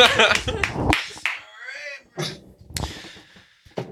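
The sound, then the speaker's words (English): A few sharp, scattered hand claps in an uneven rhythm, mixed with voices and laughter-like vocal sounds at moderate loudness, after the speaker announces he has just become an uncle and asks for clapping. “Can you clap for me? Please clap.”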